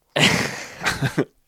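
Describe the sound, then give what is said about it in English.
A single sneeze, fairly loud: a long breathy, noisy blast followed by a shorter sharp burst that cuts off abruptly. No one is talking. “Bless you.”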